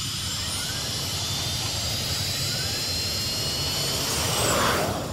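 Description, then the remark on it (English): Rocket boosters fired by Spock, shooting him, Kirk and McCoy skyward, blast with a steady, dense roar, deep rumble beneath a harsh high hiss, swelling slightly louder near the end, with no voices. “Spock hits the boosters. With an explosion of power and noise, they shoot skyward like a bullet.”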